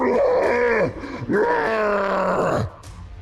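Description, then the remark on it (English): A voice imitates a yeti howling with rage on the Yeti's turn in a game: two long, loud, growling howls, the first bending downward at its end, the second longer and rising before breaking off. “It howls with rage.”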